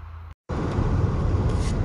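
Steady low rumble of ambient noise inside a parked truck, broken by a brief dropout to silence near the start before the droning hum resumes evenly.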